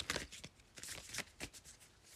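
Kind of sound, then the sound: household object, tarot cards being shuffled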